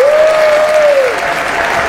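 A crowd applauds loudly with dense, continuous clapping, joined by a clear whistle that holds a steady pitch for about a second before sliding downward.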